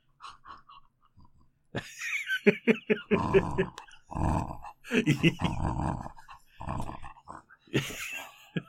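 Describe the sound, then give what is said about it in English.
A dog, Lolo the Wonder Dog, grunts and vocalizes in a string of short, rough bursts, some growly and snorting, with brief pauses between them and no clear talking over it. “Lolo the Wonder Dog, everyone.”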